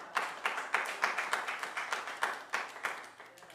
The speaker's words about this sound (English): Come on, clap your hands and bless the Lord.